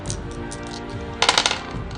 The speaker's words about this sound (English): Okay, you hit. That's a no known defense. Roll those 3 dice.